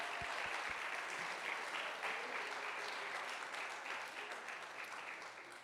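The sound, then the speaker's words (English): A church audience applauds the children, many hands clapping in a dense, sustained wash of sound that holds fairly loud throughout and tapers slightly toward the end, with a few low thumps early on. “Let's give our kids another hand clap.”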